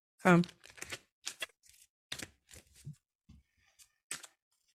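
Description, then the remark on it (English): Tarot cards being shuffled, a series of crisp, irregular papery riffles and slaps with short pauses between them, after a brief vocal sound at the start. “Shuffle them good so you don't get your husband's reading.”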